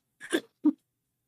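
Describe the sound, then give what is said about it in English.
A person makes a disgusted gagging sound: a short, broken retching burst, then a brief pause and a single lower, harder gulp, followed by silence. No speech. “It's making him sick.”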